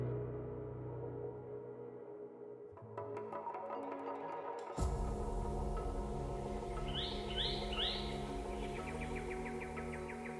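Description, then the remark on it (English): A bowerbird in northwestern Australia calls with a string of rasping, buzzy notes and harsh chatter, then a run of sweeping upward whistles, fairly loud over a steady rustling background, with no one talking. “This is the sound of a bowerbird, one of a family of birds that take their name from the elaborate constructions they build”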